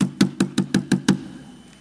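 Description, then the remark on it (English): Seven quick, evenly spaced knocks on a door, fairly loud, each with a solid hollow thud, followed by a brief fading silence. “Like, tell me what my emotion is if I come to your house and I knock like this.”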